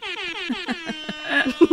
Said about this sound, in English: And also, if it's like super freaky, a super freak, we're definitely going to hit it with some air horn, some DJ air horn, and...